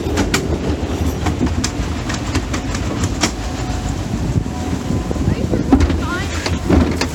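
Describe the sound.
Machinery of the Stanley Falls Flume log ride, a boat floating down a water channel, gives a steady, loud rumble with a rattling clickety-clack and scattered sharp clicks throughout, with faint voices mixed in.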